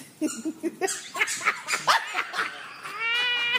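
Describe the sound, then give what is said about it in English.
A small dog yaps in a rapid string of shrill, high-pitched barks, fairly loud, ending in a drawn-out, whining yelp. No one speaks. “That little doggy is not going to be snatched. He was making too much damn noise.”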